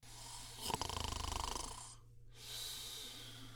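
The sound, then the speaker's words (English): Loud snoring with a rattling, buzzing pulse on the inhale, followed by a brief pause and a softer, breathy exhale. No one speaks. “You are right there, baby, snoring it up in the rocking chair.”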